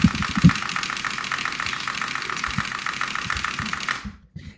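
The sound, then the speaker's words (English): Fast, steady typing on a keyboard held right by the mic, a dense stream of loud clattering key clicks for about four seconds before stopping abruptly. “Oh, did we get keyboard ASMR for the episode?”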